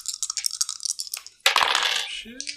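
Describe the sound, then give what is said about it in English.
Hard little objects rattle and clatter in quick bursts across a surface, then a brighter scattered tumble, as real dice are rolled on a table, with no voices. “I'm just going to use real dice.”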